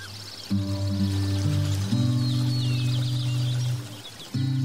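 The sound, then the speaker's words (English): Birds chirp and twitter softly in the background over a steady, low droning tone, like a calm ambient soundscape, with no voices. “Allow your thoughts to float as the birds chirp.”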